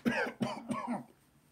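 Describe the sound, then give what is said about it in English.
A person imitates a man's cough with three quick, voiced, throaty bursts in a row, fairly loud, the last one trailing off into quiet. “Every time he's coughing, he's like this.”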